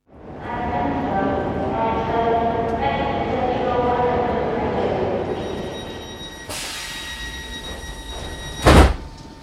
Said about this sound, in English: Is this train going to Scunny? Last time I looked, Duck.